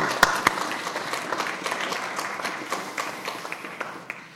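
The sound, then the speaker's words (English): An audience applauds a second time to thank people for their work, with dense, steady clapping that holds at an even level throughout, with a couple of sharper claps standing out near the start. “I'd like to just applaud you again a second time.”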